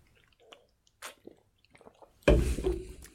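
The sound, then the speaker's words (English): A few faint mouth clicks and small wet noises, then a loud slurping sip of a cream ale beer from Newport News that lasts about a second, with no talking. “Yeah, let me get another sip, too.”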